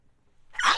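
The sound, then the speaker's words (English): A single sharp sneeze bursts out after a brief quiet moment, loud, with a breathy, noisy spray of sound that tails off quickly. “Bless you.”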